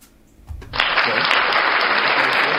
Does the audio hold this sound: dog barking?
no